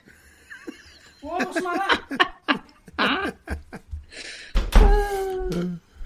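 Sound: door being closed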